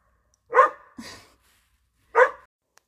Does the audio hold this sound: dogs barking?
yes